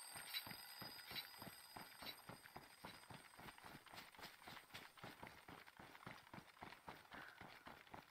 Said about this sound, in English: As you can hear, like the alarm clock was like the placeholder sound, yep. Sound for the door.